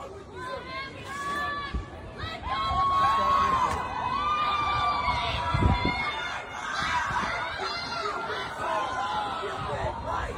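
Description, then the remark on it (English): A crowd of students shouts and cheers over one another, cheering on a professor as she is arrested, a loud, continuous din of overlapping yells and calls that swells slightly after the first couple of seconds and stays busy throughout. “But the students are cheering her on,”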